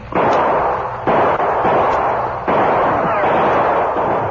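Loud, overlapping gunshots ring out in a dense volley as outlaws are caught in a gunfight with the Lone Ranger and Tonto, with sharp new blasts hitting around the one- and two-and-a-half-second marks over a continuous rumbling roar of gunfire.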